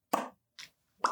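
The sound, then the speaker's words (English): Three wet mouth pops in a row, each short and sharp with a hollow, bubbly tone, the middle one softer than the first and last, with brief silences between them. “Fourth one, to pop.”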